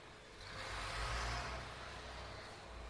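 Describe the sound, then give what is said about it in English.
A tractor drives past, its low, rumbling engine swelling to a peak midway and then fading slightly as it moves on, with steady road noise and no talking. “I didn't hear any crashes, so it's okay as the tractor goes by.”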